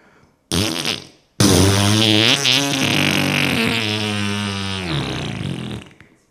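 A loud, close fart: a short burst, a brief pause, then a long drawn-out blast that wavers in pitch for several seconds before trailing off. No one speaks.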